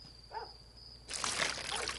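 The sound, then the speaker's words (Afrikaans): After a second of near-quiet with a faint steady whine, water begins pouring into a bowl holding a cake mixture, a continuous splashing rush that lasts to the end. “Ja, nou moet ek net water bygooi.”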